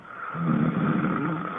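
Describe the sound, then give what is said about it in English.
A man snores in his sleep after a night of drinking, recorded by his wife: one long, rattling breath that swells in after a quiet start and holds steady, a low throaty buzz at moderate loudness with no talking. “So I asked your wife to record you when you were snoring.”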